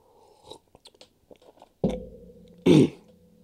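Someone sips coffee: a few soft mouth clicks, then a louder slurping gulp followed by a low sustained breathy tone, and a second short, harsher burst before it fades.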